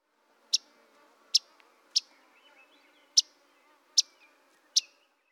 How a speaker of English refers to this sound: Yellow-rumped warblers seem to be constantly calling, and it can be an important sound to learn if you want to find less common warblers during migration. Here is the Myrtle's version of this call.